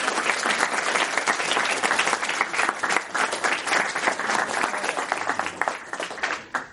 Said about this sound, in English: So let's have another big hand of applause.